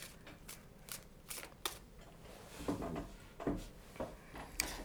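An Aleister Crowley Thoth tarot deck being shuffled, with soft papery riffles and quick flicking bursts scattered over about five seconds, with no one speaking.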